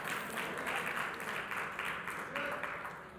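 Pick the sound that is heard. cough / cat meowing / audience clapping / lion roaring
audience clapping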